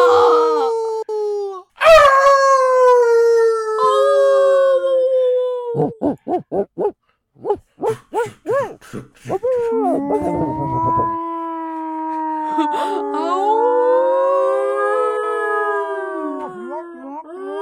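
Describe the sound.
A person imitates a wolf with long, wavering howls that slide up and down in pitch, broken midway by a burst of quick yipping yelps before the drawn-out howling resumes, loud and alone.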